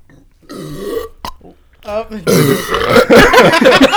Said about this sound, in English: Don't burp right into the microphone.